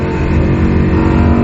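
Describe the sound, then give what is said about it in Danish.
A sports car's naturally aspirated racing engine roars loudly and steadily for a moment, a deep, throaty drone with rich rumbling overtones and no voices over it. “Det er en virkelig lækker maskine. Og det kan I nærmest også høre.”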